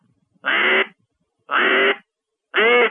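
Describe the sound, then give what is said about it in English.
A duck call blown with a harsh, gravelly over-grunt as a demonstration: three loud raspy quacks spaced about a second apart, with nothing else in the background. “Here is the sound that you're going to hear somebody over-grunting in a call.”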